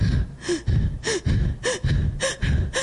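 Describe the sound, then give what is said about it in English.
A person imitates labored, gasping breaths, showing how she breathed while lying on a couch: five quick, strained inhales with a slight wheezy whine, repeating steadily about twice a second, fairly loud with no talking. “I was sitting on our couch, laying down, and I was breathing like this.”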